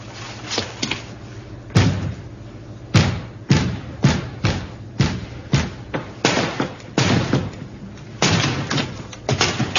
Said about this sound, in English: They reach Servalan's office, break the door down, and capture her.